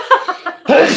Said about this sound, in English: I'm going to sneeze now.